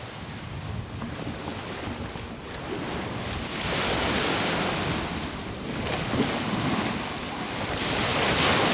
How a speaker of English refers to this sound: Oh. It's a sea and it's lovely. It's cold. Yeah, there is a little bit of a breeze, yeah.